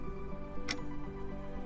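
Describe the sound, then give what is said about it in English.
A clock ticks slowly, two crisp, sharp ticks about a second apart, set against a steady low humming drone with no voices. “I'd like to imagine they were just sitting, hearing the clock ticking as they all stare at each other.”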